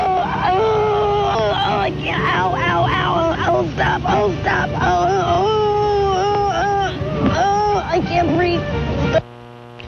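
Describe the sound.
A woman moans and wails in pain after falling off a grape-stomping platform at a vineyard on live television and landing on her neck. Her loud, wavering cries rise and fall continuously with other voices mixed in, until the sound cuts off abruptly near the end.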